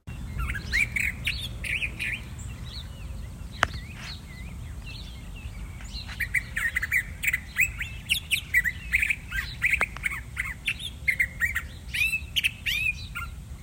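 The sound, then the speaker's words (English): A Curved-billed Thrasher calls with sharp whistled notes mixed into busy, varied chirping phrases, loud, repeating almost continuously over a low steady background rumble. “This bird is so typical of the deserts of the American Southwest and northern Mexico that its whistled call is often one of the first calls new birders to the Southwest desert learn.”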